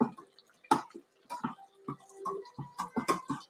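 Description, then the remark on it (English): A spoon stirs and clinks against a container of hot water as about a teaspoon of chicken broth bouillon dissolves, with light sloshing and scattered sharp taps over a few seconds, with no one talking. “And I'm going to take about a teaspoon of it, which is equivalent to a cup, and put it in with the hot water that we have over here and let it begin to dissolve.”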